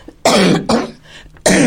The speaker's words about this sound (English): Got to have a cough here